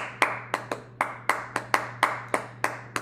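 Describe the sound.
A single person claps a syncopated Latin rhythm, ten sharp, bright hand claps in uneven groupings that repeat, with no voices, over a steady low hum.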